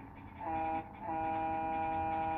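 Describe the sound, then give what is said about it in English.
A Tonka toy truck horn honks twice: a short blast, then a longer one held steady to the end. Both are loud, buzzy and mid-pitched, with no talking. “That horn just said, "Your mom."”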